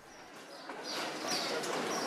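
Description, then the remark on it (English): Sparrows chirp high in the rafters of a market roof, nesting in the top of the gable in springtime; their faint, scattered tweets blend into a steady wash of busy market ambience and murmuring. “There's always sparrows. They're springtime, mate.”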